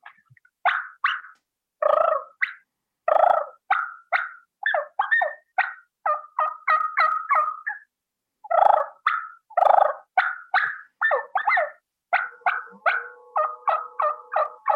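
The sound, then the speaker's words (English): Soft turkey clucks and yelps produced on a mouth call, in quick rhythmic bursts separated by brief pauses, with a rolling purr near the end and no talking. “this can be on a mouth call, whatever you're most proficient at being soft and quiet”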